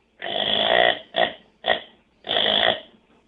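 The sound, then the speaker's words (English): A deer buck grunt call sounds four times: a long low guttural grunt, two short clipped ones, then another long grunt. The series is loud and raspy, with no speech over it. “So I'll start with more like a buck grunt, just.”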